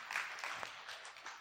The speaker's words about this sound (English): Yeah, you can clap on that one. That was good.